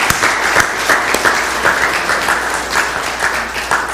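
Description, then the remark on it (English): A crowd applauds mothers and women on Mother's Day, steadily for several seconds, a dense wash of many hands clapping at once with sharper individual claps popping out, loud and continuous without any voices. “Let's give our mothers and our ladies a round of applause today and just celebrate them for what they've done.”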